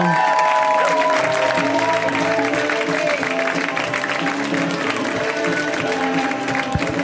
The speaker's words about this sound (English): A round of applause, everyone, for Janine Brito.